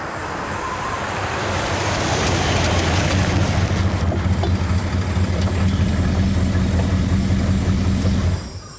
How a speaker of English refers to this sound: Gravel flew as her car pulled into the antique shop parking lot.